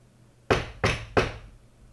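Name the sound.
knocking on a door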